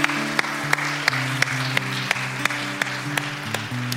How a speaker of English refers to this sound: Can we give these four individuals that raised their hand a huge round of applause? Yeah.